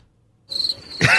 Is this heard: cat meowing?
no